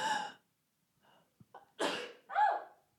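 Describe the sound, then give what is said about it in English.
A loud sneeze: short catching breaths build up, then a sharp explosive burst followed quickly by a second voiced release, with no talking in between. “Oh, I'm going to sneeze.”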